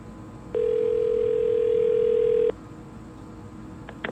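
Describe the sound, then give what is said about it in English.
A single steady ringback tone from an outgoing phone call sounds for about two seconds, clear and fairly loud, then stops, leaving a quiet line with a couple of faint clicks. “Uh-oh, it's ringing.”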